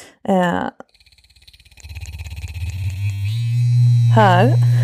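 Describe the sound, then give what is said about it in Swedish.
A vibrator sex toy buzzes with a classic deep, low rumbling vibration rather than a high-frequency buzz, starting as faint pulsing, then swelling into a loud, steady drone. Short bursts of a voice come at the start and end. “Där, här har vi en klassisk mullrande vibration.”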